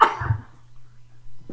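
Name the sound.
sneeze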